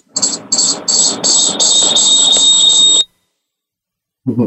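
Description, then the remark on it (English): Loud, rumbling audio feedback with a thin steady whine and rhythmic pulsing hiss on top, lasting about three seconds before cutting off abruptly, followed by a short low thump. “Sorry, we had some feedback going on.”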